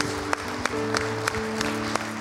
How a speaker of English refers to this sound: Come on, let's give him a hand clap of praise in this house today.